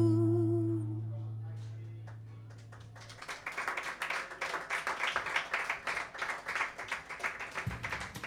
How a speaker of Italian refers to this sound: Grazie, grazie di questo bel applauso.